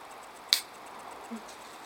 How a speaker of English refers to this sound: It is, it's in a black can with white writing on it. As I'm stood outside, I can't hold my glass and open the can, so let's open this can.